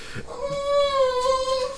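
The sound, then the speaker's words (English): A puppy lets out one long, high whimpering whine that holds steady for over a second, clear, with no talking over it. “I mean, I told you, my wife put a puppy in the room with me, and so he's part of the show now.”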